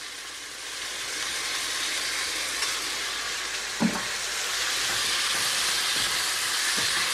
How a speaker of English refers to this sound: And now I'm going to add my sauce that we've very cleverly prepared earlier. I'm going to pour that in and make sure you scrape every last bit of that sauce out of that bowl.